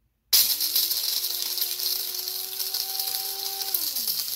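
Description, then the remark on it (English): An electric coffee grinder, run by pressing its button, starts abruptly and grinds coffee beans for about four seconds, a loud gritty rattle of beans over a steady motor whine that dips in pitch as it winds down near the end. “And you really just grind this up to the consistency that you like your ground up coffee whenever you pour it into your coffee filter.”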